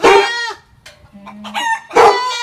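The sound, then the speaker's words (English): Three harsh, strained squawks in quick succession, loud, like a distressed chicken: the three-part bark of a Barvarian barking goat rearing up on its hind legs. The middle cry is thinner and wavering, and the first and last are the strongest. “Now, it's said that Klaus approached the Barvarian barking goat and it reared up on its hind legs and let out a distinct three-bark bark that sounded a little like this.”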